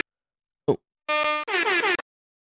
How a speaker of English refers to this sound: Oh. It seems like my air horn is broken there. it's a great start for the final episode, isn't it? Where your sound effects cock up straight away.